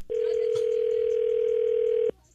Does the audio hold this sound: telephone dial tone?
yes